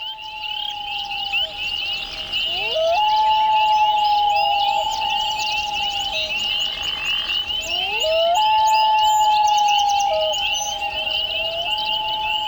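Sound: common loon calls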